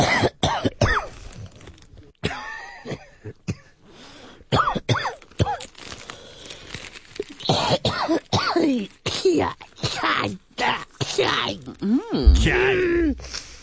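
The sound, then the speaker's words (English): A montage of a woman's coughing: a rapid string of separate coughs and throat-clearing sounds, fairly loud, cut together one after another with short gaps, some harsh and groaning, with occasional voice fragments between them. “And then, of course, the coughing. This is just, you know, I put together a montage for you.”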